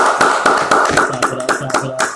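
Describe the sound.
A quick burst of hand clapping for a special guest, sharp slaps coming in a fast, slightly uneven rhythm for a couple of seconds, with a voice faintly audible underneath partway through.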